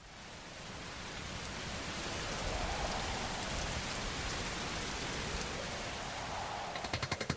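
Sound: rain falling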